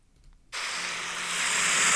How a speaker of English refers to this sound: I'll try and play the sound on my phone at the same time that I play it on the screen. So, ocean waves.